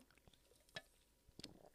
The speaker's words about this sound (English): Sorry about that. I had to take a sip of something.